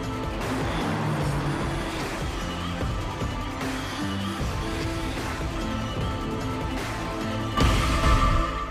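A BMW car drives past in an advert, its engine rumbling loud and steady under a dense wash of sound, with a sudden heavier surge near the end. Nobody speaks.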